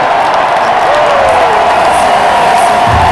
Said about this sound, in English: He's pumped up. You can see it. Listen to the crowd. It's good to be in Toronto.